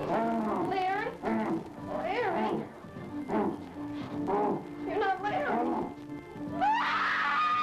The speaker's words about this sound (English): That's a good scream. That was a good scream. Oh, it's a great scream. It's a quality scream.